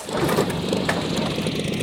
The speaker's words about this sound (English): And my brave brother and partner, Orville, is piloting the first manned airplane flight ever. In the Wright Flyer number one. Orville, are you ready? Ready! Fire up the engine!